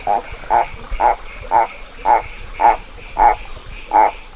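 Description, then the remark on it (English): A frog calling from under giant boulders in a rainforest gives a dog-like barking call, eight short barks repeating at an even, brisk pace, clear over a steady buzzing hum in the background. “But when you're in the forest at night, and sometimes during the day these guys call, you can just hear like a dog barking from under these giant boulders in the rainforest.”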